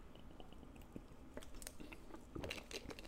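Close-up, quiet mouth sounds of someone sipping water: a few soft wet slurps and swallowing clicks over about three seconds, with no talking.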